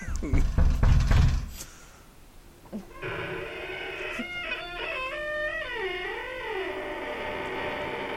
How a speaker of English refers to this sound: Yeah, they're coming up to the door. Then they knock on the door.